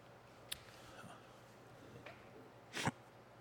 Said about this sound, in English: Sorry, I'm trying to pick out flavors on this beer. I got to blow my nose.